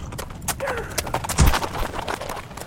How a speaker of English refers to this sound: We rode away from the sheriff's guns into a wasteland of rock. Hard riding, not riding.